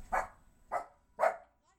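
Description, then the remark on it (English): Three sharp, high-pitched yaps from a small puppy, evenly spaced about half a second apart, clear with no one talking over them. “You have a barking puppy.”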